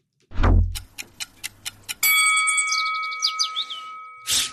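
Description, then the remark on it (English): A countdown sound effect: a low thud, then five sharp, evenly spaced clock ticks, followed by a loud ringing alarm tone with a warbling chime and a final noisy burst. “All right, when the clock goes, no, this side.”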